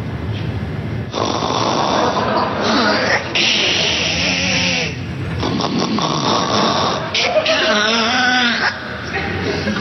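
Loud, close snoring in long rough bursts, rattling and sputtering like an engine struggling to turn over, with brief gasping pauses between the heavy, buzzing breaths.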